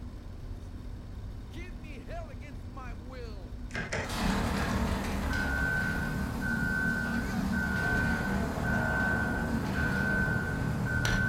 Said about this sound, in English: That thing is a Tucker snowcat. He's doing something to the engine. A snowcat? Yeah. It's like a cross between a truck and a tank. They're great for Antarctic conditions. Those treads help it drive really well over the snow.